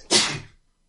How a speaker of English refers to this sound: Could have filled the silence there, everybody, rather than just let me sneeze.